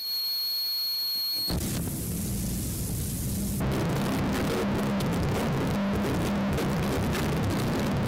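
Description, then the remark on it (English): In a noise music piece, a brief calm passage of soft, sustained high tones is abruptly swept away by a loud wave of harsh, distorted noise that grows denser and keeps roaring to the end, with no voices. “Okay, let's listen to the next bit, which is at 9:29, where you've just got these kind of peaceful bits and then this wave of distortion.”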